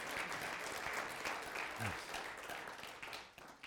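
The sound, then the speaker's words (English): An audience breaks into steady applause, a dense wash of many hands clapping at an even level that thins out and fades toward the end. “Go ahead and clap, not for me, but for the truth.”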